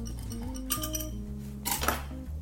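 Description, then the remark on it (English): A whisk clinks and scrapes against a bowl, mixing a salad dressing of apple cider vinegar, olive oil, maple syrup and sea salt, in two short bursts of metallic rattling, heard over a steady low tonal background with no talking. “We're gonna mix this and then toss it into the salad.”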